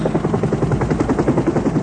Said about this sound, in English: There goes the chopper.